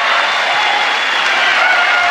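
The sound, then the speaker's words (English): An audience at a show where a man smashes fruit cheers and applauds in a dense, unbroken roar of clapping and shouting that stays loud and steady for the whole couple of seconds. “People go nuts for it. They adore it. People are screaming, they're laughing, they're tossing the fruit around amongst themselves.”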